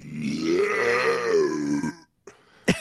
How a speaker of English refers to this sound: I can't do it again, but it was a burp.